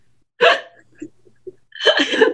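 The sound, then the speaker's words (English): Two loud belching sounds, the first brief and the second longer and rougher, separated by a pause with a few faint small noises. “You are frozen with your mouth wide open, burping.”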